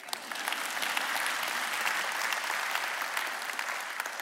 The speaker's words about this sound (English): You may clap.